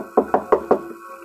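Four evenly spaced knocks on a wooden door right behind the listener at a séance, fairly loud, each a hollow thud with a short resonant decay, followed by quiet.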